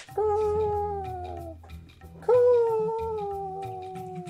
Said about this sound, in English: This sort of falling bird cry, like a long caw, which echoes through the sky. It is a long distance away, nowhere near as close as the cries of the birds that attacked you, you know, some hours ago. And then it fades off again.